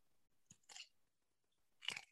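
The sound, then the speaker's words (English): Two crisp crunches of biting into a garlic-flavored gourmet pickle from Natural Harvest, the first with a quick follow-up crackle, the second louder and sharper after a brief pause, with no talking. “The crunch.”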